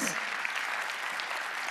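A crowd claps steadily throughout, a dense, continuous patter of many hands at an even loudness with no voices standing out. The crowd gives a thank-you round of applause for Jesus.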